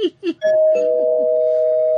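doorbell ding-dong sound effect

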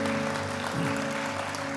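church audience applauding

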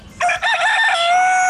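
cockerel crowing

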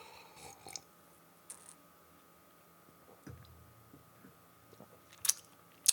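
sipping beer

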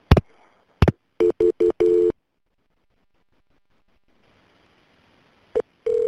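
telephone ringing

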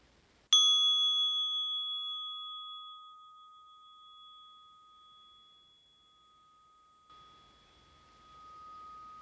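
meditation bell ringing

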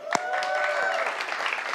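audience clapping

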